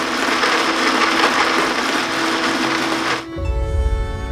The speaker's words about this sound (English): Activating blender.